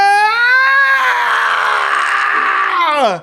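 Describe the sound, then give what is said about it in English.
A person lets out one loud, sustained scream lasting about three seconds, starting high and strained, roughening in the middle, then sliding downward and cutting off abruptly. No other sounds. “Theo screamed. And continued to scream.”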